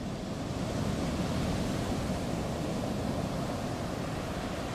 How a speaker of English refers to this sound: Oh my god, oh my god, oh my god, it's a tidal wave!